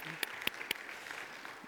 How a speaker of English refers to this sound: And you may not, we can clap.